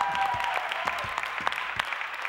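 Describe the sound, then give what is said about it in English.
A church audience bursts into steady hand clapping in praise for people coming down to the front, many overlapping claps forming a dense, sustained wash of applause with a few sharper individual claps standing out, moderately loud. “Got a hand clap of praise for our brother and our sisters who are coming down.”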